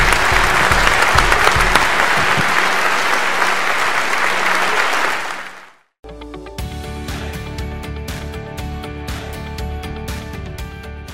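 An audience applauds loudly with dense, sustained clapping that fades out about halfway through, then instrumental music with steady beats and held tones starts up.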